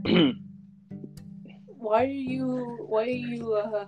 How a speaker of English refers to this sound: why are you clearing your throat, kid?